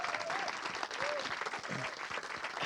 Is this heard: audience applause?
yes